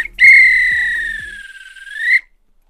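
A single long, shrill referee's whistle blast lasting about two seconds, loud, with a slight pitch rise before it cuts off, over a few faint low thuds.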